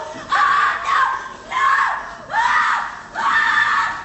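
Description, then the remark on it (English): A woman screams over and over in loud, anguished bursts, crying "Let me go!", roughly four long distressed wails in quick succession, strained, with brief gasping gaps between them. “Then we hear this woman screaming her tits off, basically. And she's losing her shit.”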